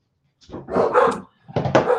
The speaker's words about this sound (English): Whose dog is that in the background? That is Mr. Clyde. Mr. Max. No, it ain't Max. Clyde.